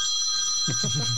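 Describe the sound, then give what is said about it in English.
A phone rings with a steady, high electronic tone that holds through the whole moment, while a low voice starts murmuring underneath partway through. “Need to answer the phone.”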